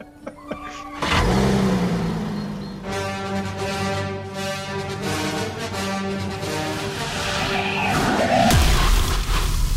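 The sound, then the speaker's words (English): A car engine in a TV commercial catches after a brief quiet moment, then revs loudly with a steady, rising mechanical drone that swells and dips before a final throaty rev near the end. No one speaks. “It's a Volkswagen?”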